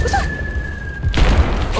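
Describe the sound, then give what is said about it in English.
A pipe rifle fires a single heavy gunshot boom, deep and thunderous, breaking over a low rumbling background that carries a thin steady whine before the shot. “That thing, that noise right there sounded like artillery, didn't it? Some pipe rifle, that is!”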